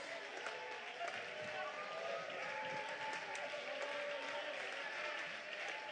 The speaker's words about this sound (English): You're going to have to do more than a little golf clap at conference and a little nodding of your head.